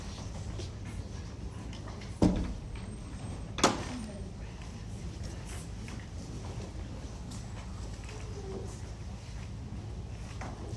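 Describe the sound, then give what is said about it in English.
A door at a church service swings shut with a solid thud, followed about a second later by a second, sharper knock as it settles, with a steady low background hum. “I closed that door there.”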